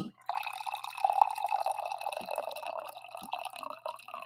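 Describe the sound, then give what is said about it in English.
A steady stream of coffee pours into a cup for several seconds, fairly loud, with a slightly trickling, bubbling quality and no talking over it. “Speaking of caffeine and speaking of the word indubitable, it is time for me to pour my coffee.”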